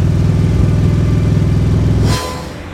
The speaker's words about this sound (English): I get onto the motorcycle, breathe the air, put on my helmet, start her up one last time